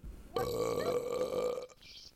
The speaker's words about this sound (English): Is it flushing a toilet? No, that's burping.